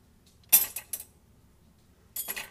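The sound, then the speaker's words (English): Silverware clinks and rattles in a dishwasher, a bunch of it trapped down in one part: three quick metallic clatters, a pause, then another short cluster of clinks, with no one talking. “Like why is it so, okay, so there's silverware, like a bunch of silverware trapped down in the this part.”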